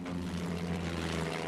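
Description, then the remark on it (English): A propeller aeroplane drones overhead in a flyover as coffins are escorted home amid flags and parades, its engine giving a steady, throbbing hum that holds constant throughout the brief moment, fairly loud with no voices. “an honor guard aboard the Svenskund, the same vessel that had transported Andrea and party to the original balloon departure, escorted the coffins back home amidst flags, parades, and aeroplane flyovers.”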